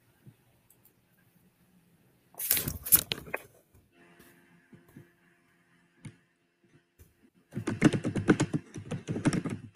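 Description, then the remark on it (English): Rapid clacking of keys on a computer keyboard, coming in two bursts separated by a quiet pause with a few stray taps, the second flurry busier and longer than the first. “I like the typing”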